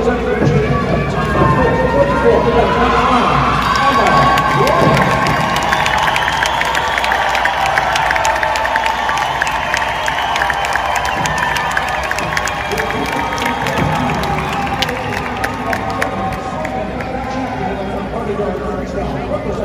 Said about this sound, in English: Listen to those boos rain down.